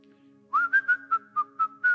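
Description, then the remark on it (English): A person whistles a short, steady tune of pulsed notes at a fairly constant pitch, clear, with a faint low hum underneath and no talking. “Can anybody wash dishes and whistle?”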